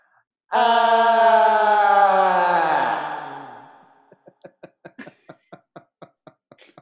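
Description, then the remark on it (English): A voice imitates actress Lily's low, contralto scream: a strained, harmonic wail that holds for about three seconds, then sags in pitch and fades, followed by a string of short, rhythmic breathy pulses. “She doesn't know how to scream. So basically this is how she screams.”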